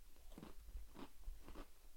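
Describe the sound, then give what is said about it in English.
Crunchy chewing of a cereal bar: three crisp bites crackle at a steady rhythm, each a short, dry burst against quiet background noise, with nobody speaking. “I'm thinking like the Cinnamon Toast Crunch milk and cereal bar.”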